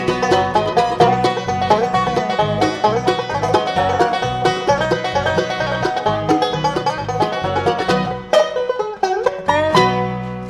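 A bluegrass band plays a fast instrumental passage led by rapid banjo picking over a steady bass rhythm, loud, with a brief break before the full band kicks back in.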